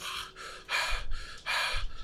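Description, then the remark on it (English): A person imitates horses breathing hard, with a rhythmic series of loud, breathy huffs and snorts in quick succession, with no speech. “A lot horses of breathing. Horses are breathing.”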